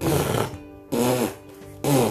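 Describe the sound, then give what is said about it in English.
Three loud, sputtering raspberries are blown in quick succession, each a rough, buzzy burst of about half a second separated by brief quieter gaps. “So, and wait, that because of it's funny, but the Edmund Elephant's gecko can blow big noisy raspberries.”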